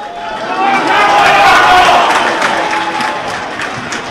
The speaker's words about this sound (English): There's the Dr. Cullen Park roar here in Netwatch Cullen Park.